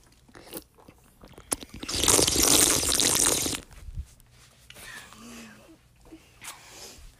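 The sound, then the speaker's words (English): People drinking water after a toast: a loud, noisy slurp lasting over a second, followed by quieter gulps, swallows and wet mouth noises, with faint voices murmuring in the background. “Anywho, everybody drink it. ASMR.”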